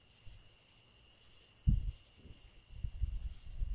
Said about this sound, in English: That natural sound's rising and the crickets are coming down with the beat. Crickets are laying down the beat.